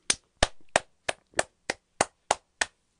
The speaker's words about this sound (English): Round of applause.